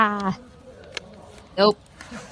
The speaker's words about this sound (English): Nope. That's a horse. Yeah, I don't get this. So, like, this is what? Like a donkey?